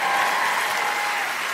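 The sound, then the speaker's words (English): An audience claps for their Minnesota senator, Amy Klobuchar: a steady, dense, even wash of many hands applauding at a constant loudness with no voices rising above it. “But Amy Klobuchar was asked once, how come, you can clap for our senator.”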